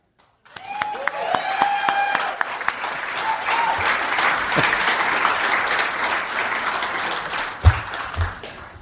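A crowd at a trial bursts into sustained applause as the defendant T.J. Miller is called to the stand, dense steady clapping lasting several seconds with a few whoops and cheers rising over it near the start, plus a brief louder thump toward the end.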